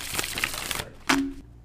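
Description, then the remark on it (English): A deck of cards being shuffled: a rapid run of crisp, papery clicks, then a brief pause and a sharper flurry before it stops. No one speaks. “I did the biggest shuffle and everything, man.”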